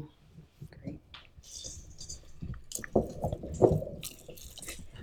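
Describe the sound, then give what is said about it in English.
Berries squelch and pop as they're squeezed and mashed by hand, a run of irregular wet squishing bursts that grow louder and juicier midway through. “I just think it's fun to make people squeeze berries.”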